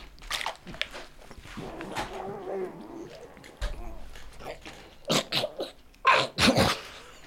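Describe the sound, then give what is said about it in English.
Someone who has spilled water on themselves while drinking chokes on the water with strained, gurgling gasps and throaty sputtering, followed by two clusters of sharp, harsh coughs near the end, loud and abrupt against otherwise quiet moments. “So instead I just spilled water on myself and choked”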